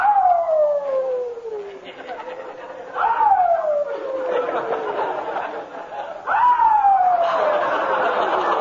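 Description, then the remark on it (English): A new puppy in its bed in a garage howls very late at night, toward morning, three times in long, falling wails, each starting high and sliding down, spaced a few seconds apart and fairly loud against a quiet background. “It seems the new puppy doesn't like his bed in the garage.”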